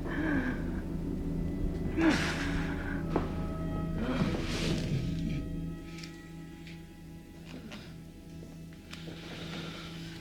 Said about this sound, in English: Hand me my oxygen, please. I'm having some trouble breathing.